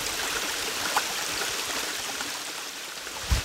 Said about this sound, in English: This is a little creek that runs right through Dolly's childhood home.